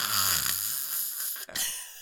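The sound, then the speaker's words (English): A voice imitates the heavy, drowsy breathing of someone falling asleep in church, a raspy snore-like drag of air that runs for about two seconds, fairly loud, with a brief catch near the end. “Did they hear me, like, heavy breathing?”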